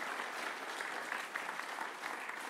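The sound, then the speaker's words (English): Sustained applause from an audience, a dense, steady wash of many hands clapping at once, fairly loud and even throughout with no voices on top. “The fact that you are not clapping about reaching the lost makes me feel like I'm by myself doing this.”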